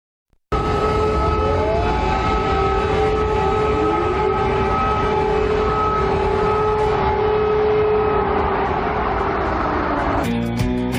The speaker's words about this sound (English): it's showing the city, and there's the chyron at the bottom says air raid sirens ringing out in Ukraine's capital.